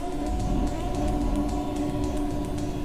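A steady, low rumble of railway station ambience at Euston Station with a train present, layered with constant humming tones and faint, evenly spaced clicks running throughout, heard continuously.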